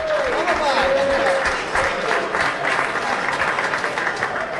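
A show's audience claps steadily for the contestants for several seconds, a dense, loud patter of many hands with a faint whistle rising early on, fading slightly toward the end.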